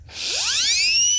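A single victory whistle slides quickly upward from a low pitch to a bright, sustained high tone, breathy and fairly loud, lasting about a second with no talking.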